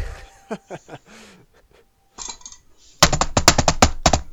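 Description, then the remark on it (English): A few brief vocal sounds, then a quick flurry of sharp, loud taps in an uneven drumming rhythm, like fingers or hands patting a surface to mimic bongo drums. “That's vaguely bongo-y.”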